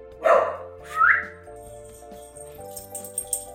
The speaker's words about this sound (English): you're naughty. Naughty dog. The mail carrier is bringing us mail. That's her job.